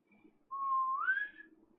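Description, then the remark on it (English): A single clear whistle, held steady and then sliding upward in pitch before cutting off, about a second long, with faint low background noise. “He whistles.”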